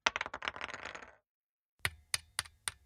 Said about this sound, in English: The family board game. Rolling the dice.